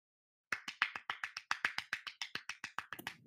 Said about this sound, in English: Give a round of applause for those of you who are new today.